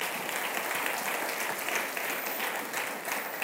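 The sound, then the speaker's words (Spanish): Steady audience applause in tribute to God fills the whole stretch, a dense crackle of many hands clapping at an even, loud level with no voices standing out. “Dele un aplauso a Él.”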